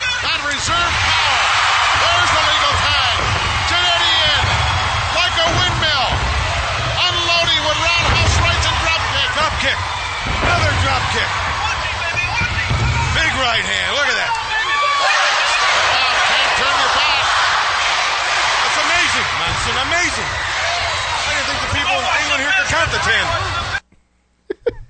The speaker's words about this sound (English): So you kind of hear the crowd, like, they're still into what's happening, but they're not, like, that hot, like, roar that you want from one of these tags.